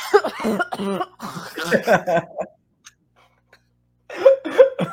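A woman coughs harshly and violently, coming in a rapid run of rough bursts, a short pause, then another strained fit of coughs.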